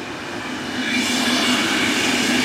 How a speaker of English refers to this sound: Hold on, second train.